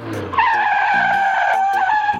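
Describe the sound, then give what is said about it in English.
A car's tires squeal in one long, loud, high-pitched skid lasting about two seconds as the car turns while going really fast, preceded by a brief low engine rumble, with no talking. “And when you put a diphthong in the middle of a tongue twister, it's kind of like turning your car when you're going really fast.”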